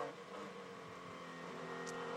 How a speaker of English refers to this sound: you can hear the car grinding against the ground. The plank, as it's called, underneath the car, which determines the ride height of the car, is hitting the ground at a number of places around the track.